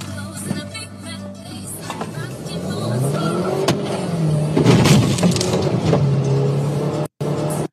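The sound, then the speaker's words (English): A car on a one-lane highway comes to a stop, its engine droning and revving with rising pitch amid rushing road and tire noise, fairly loud, before a brief abrupt cutout. “A car stops on a one-lane highway.”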